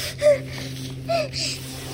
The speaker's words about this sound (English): I gasped.